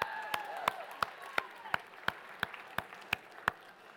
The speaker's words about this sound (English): All right. Wow. Let's clap it up for him.